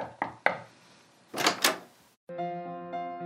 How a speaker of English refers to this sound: He passed the door a dozen times before he had the courage to go up and knock.